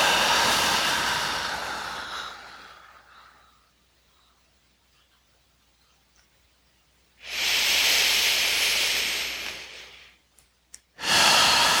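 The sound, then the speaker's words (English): Long, deep breathy exhales during a breathing exercise, with no talking: a loud airy rush that fades out slowly, a stretch of near silence, then another strong exhale and the start of a third. “And three more together on the exhale, scooping down into the earth.”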